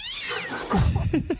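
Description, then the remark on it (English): A single drawn-out cat meow, high and sliding downward in pitch, followed by lower, choppier vocal sounds. “Who you got there? You got some pipe peeking in? Oh, kitty cat.”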